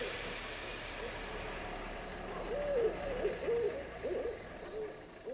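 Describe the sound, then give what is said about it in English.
Owls hoot in a series of soft, wavering calls at night, heard from a parking lot beside a building amid crickets, starting partway through over a steady low background hum. “It's dark, sound of crickets, the thumbprint in the distance, and some hooting owls.”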